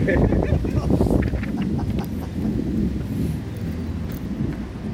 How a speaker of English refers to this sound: So it's a bit windy.